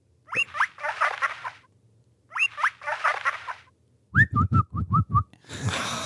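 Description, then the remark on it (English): Someone whistles an imitation of guinea pig squeaking: two bursts of rapid, high chirpy trills, then a quick series of sharp, pulsing squeaks, ending in a short rush of breathy noise. “this is a guinea pig.”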